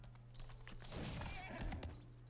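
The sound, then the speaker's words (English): Horse hooves clip-clop in a quick, uneven rhythm of sharp knocks, fairly quiet, over a steady low electrical hum, with no voices. “This horse is pretty cool.”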